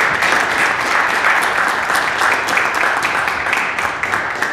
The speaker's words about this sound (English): I think we should give a quick round of applause for Independence Blue Cross.